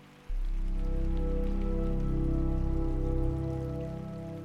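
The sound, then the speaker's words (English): A waterfall rushes in a loud, steady roar that starts abruptly and holds constant, with a deep low rumble underneath and no voices. “With each step, the sounds of the waterfall grows bolder.”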